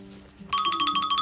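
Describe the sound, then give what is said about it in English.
A man's phone begins ringing partway through a radio interview with a steady electronic ringtone: a bright, high warbling tone that pulses rapidly and keeps going, moderately loud, with no one talking. “Oh, he's a busy man. He's got the phone.”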